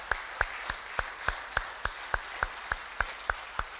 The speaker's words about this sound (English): How about another round of applause for the kids? They did a great job.